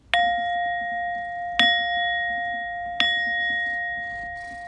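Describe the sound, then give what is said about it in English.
A singing bowl is struck three times at an even pace, each strike producing a bright, sustained metallic ring with clear overtones that lingers and overlaps the next, with no talking. “But he loves the singing bowl.”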